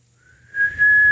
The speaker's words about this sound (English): See? Is that loud. Your best whistle? Loud, right? Try again.